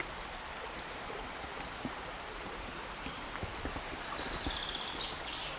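A small stream burbles and trickles steadily, a continuous wash of water with little splashes and bright gurgles rising now and then, with no voices.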